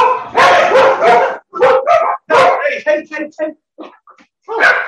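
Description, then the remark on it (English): A dog barks loudly, starting with drawn-out, throaty barks, then a quick run of short yips that trail off before one last bark. “Hello, my dog.”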